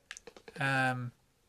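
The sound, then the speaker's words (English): A quick run of about five light, crisp mouse clicks while stacking firewood in a computer game, followed immediately by a brief, steady, buzzy tone lasting about half a second before it cuts off. “So we're getting experience for clicking on stuff.”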